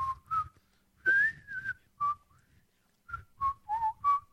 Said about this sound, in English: There you go. That's all I got. That's it. I'm a terrible whistler. That's not an easy song to whistle, either.